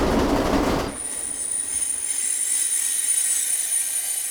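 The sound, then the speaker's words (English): A train rumbles into a station platform with a broad roar, then its wheels give a sustained high-pitched squeal as it slows, the metallic whine ringing steadily over a quieter hiss. No voices. “Let's call this train, baby.”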